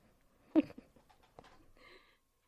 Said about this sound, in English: Okay, cat. Really? Okay. Is it 9 o'clock? It's almost 9. It's that time of night when the cat decides he wants to talk to his mother.